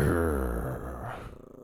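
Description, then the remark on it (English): A female dog growls low and rumbling right into the microphone, one sustained throaty growl lasting under two seconds before tapering off. “I can look at her and she'll growl into it.”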